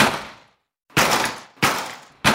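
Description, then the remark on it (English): A storm door is kicked four times in a test, each blow a loud, sharp bang followed by a short metallic rattle that fades out. The kicks come at uneven intervals, and no one speaks. “And when that didn't work, we tried kicking it.”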